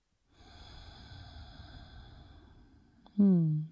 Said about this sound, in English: So just breathing in and out through the nose, hand to your heart center, feeling into this moment.